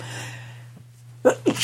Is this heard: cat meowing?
no